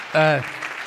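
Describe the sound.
Audience applause, brief and soft: a short voiced cheer rings out at the start, then a light, steady patter of clapping continues underneath for under a second.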